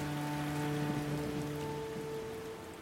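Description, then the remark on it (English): Extremely heavy rain pours down in a dense, steady roar, loud, with a faint low hum running underneath. It continues without a break and no one speaks. “It was just an amazing amount of water coming down. See, I've never seen it rain so hard in my life.”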